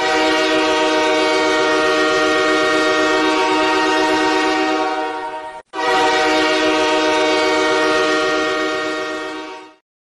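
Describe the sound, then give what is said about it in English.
A train horn blares loudly in two long, sustained blasts, the first over five seconds, separated by a brief gap, with a train rolling beneath. No one speaks. “Let's bring out the Pain Trains here in the sit down.”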